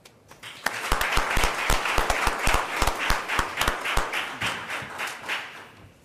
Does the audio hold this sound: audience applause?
yes